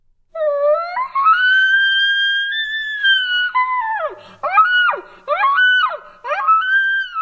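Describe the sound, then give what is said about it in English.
A six-year-old kindergartner girl from Fruta, Colorado, imitates an elk bugle with her voice: a long, rising, high-pitched wail held steady for a few seconds, then several shorter swooping whistle-like calls dipping and rising in pitch. “That is an elk bugling, or at least it sounds like that. The big noise was actually made by this little girl.”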